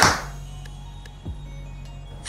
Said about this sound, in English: the 2019 Hoyt Helix. We've got this one, it's set at 69 pounds, 29 inches of draw length, and we're gonna start off by shooting four different arrows. First one we're gonna shoot is a 350 grain arrow. See what kind of speed we're getting out of this.